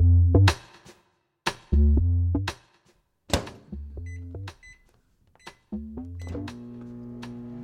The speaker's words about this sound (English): If your pre-ride meal begins in one of these, a microwave, boy, do I have a segment for you. I want to upgrade your breakfast.